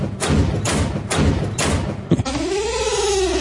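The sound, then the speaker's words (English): Four heavy, evenly spaced thuds of a head repeatedly banging against a wall, followed by a sharp knock and a drawn-out groaning vocal sound. “Go back to banging your head into the wall, I guess.”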